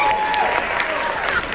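A crowd applauding and cheering for a woman on stage, with steady, dense clapping and a few cheers mixed in, loud and continuous for the whole moment.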